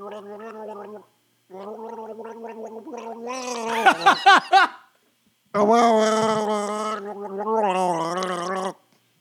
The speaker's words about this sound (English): So ready, whenever you're ready, you're going to gargle We the People until you have to spit. I don't know how long you do this.